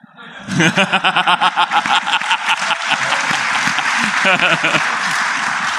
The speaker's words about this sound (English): Clap, it's okay.